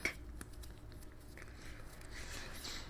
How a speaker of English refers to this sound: I'm sorry that you keep hearing, like, the... You hear that? You hear that? The water? You can hear the water, right? Yeah. It's, like, in the bottle? Yeah. Sorry about that.